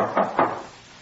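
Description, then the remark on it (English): Two firm knocks on a wooden door, spaced a fraction of a second apart, clear, followed by quiet with no voices. “Hey, young ladies, don't you ever open your door?”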